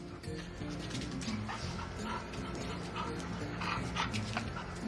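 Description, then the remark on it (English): A dog named Patches whimpers and whines excitedly, with quick breathy panting and a few short yips running continuously throughout, while playing fetch with a stick in Nowhere. “Well, here's the featured entertainment in Nowhere. Not the stick, the dog, Patches.”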